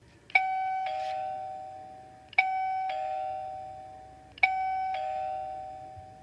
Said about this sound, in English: You gotta love the Ring doorbell these days with all the video.